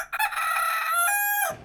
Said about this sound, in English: Yes, his name is Rico. He sings every morning at 5. Rico el gallo canta todas las mañanas a las 5. They wake up very early here in the farm.